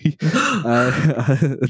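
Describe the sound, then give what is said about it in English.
A voice lets out a quick run of dramatic, voiced gasps, fairly loud, rising and falling in pitch over a couple of seconds. “But gasps.”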